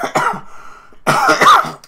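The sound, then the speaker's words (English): Two bursts of harsh coughing brought on by allergies, separated by a brief quiet pause, the second bout louder and more drawn out, with a raspy, throaty edge. “I got a pretty bad cough.”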